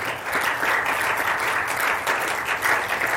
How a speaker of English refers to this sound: Okay, you're clapping for a while.